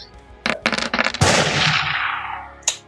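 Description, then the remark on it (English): A gunshot sound effect: a rapid cluster of sharp shots, then one loud blast whose rumbling tail rings out for over a second before a final short crack. No one speaks. “And this guy is within range, so Sprouts is going to take a shot. All right, so not a trick, but a regular attack. Go ahead and blast him.”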